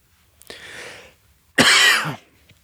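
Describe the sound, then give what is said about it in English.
A person coughs twice with no talking: a softer, breathy first cough, then after a short pause a louder, harsher one. “Again, cough, not a sneeze.”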